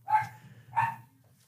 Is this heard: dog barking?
yes